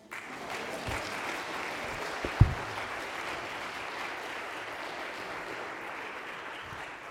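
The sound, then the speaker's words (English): An audience claps together in a steady, dense wash of applause that holds at an even level for several seconds, with one brief louder clap standing out early on. “Okay, let's clap.”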